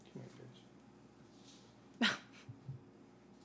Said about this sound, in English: This puppy's walking around. I know, she huffing.